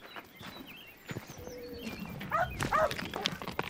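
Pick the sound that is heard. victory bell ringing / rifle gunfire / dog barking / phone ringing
dog barking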